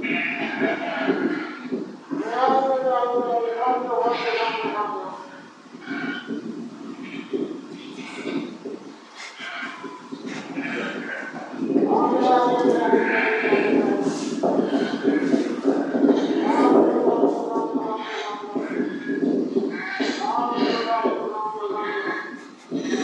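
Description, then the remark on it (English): A flock of sheep comes to their shepherd in fog, with overlapping wavering bleats and the shuffle of many hooves running steadily for the whole stretch. “So as you can see, the sheep, they respond relatively quickly to their shepherd.”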